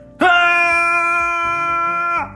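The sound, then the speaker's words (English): A voice imitates a man screaming: one loud, sustained cry held steady for about two seconds, close and alone, then cut off abruptly. “Adeline's dad was holding on as hard as he could, screaming.”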